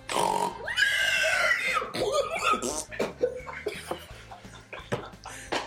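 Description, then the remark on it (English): A person in a studio loudly imitates a Danish pig, giving a long, strained squeal followed by a series of snorting grunts and oinks, with no other talk. “I'm also joined by a fine Danish pig.”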